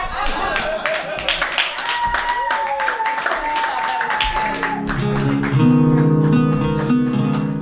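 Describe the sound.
An audience at a stand-up comedy show claps wildly for a comedian, a dense, loud patter of many hands with some voices mixed in, and after about five seconds steady sustained tones rise up beneath the fading applause.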